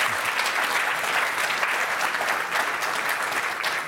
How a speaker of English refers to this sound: That ends our lightning round. Let's give them a round of applause for getting through that.